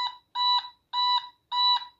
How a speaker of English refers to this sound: Also, besides that noise, also, here are some basic sound effects that can be made from the automaton. An alarm clock.